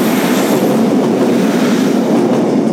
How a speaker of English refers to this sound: Here comes another train, the lifeblood of this part of the world.